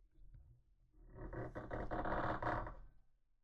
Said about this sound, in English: The floorboards are creaking.